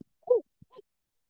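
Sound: owl hooting imitation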